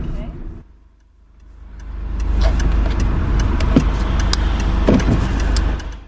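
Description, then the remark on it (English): A learner car's engine hums steadily from inside the vehicle, dipping briefly then building into a strong, continuous drone with road rumble and occasional clicks and thumps as it drives along a road. “But she sent us a little sneaky peek of how she fared being back in a learner car.”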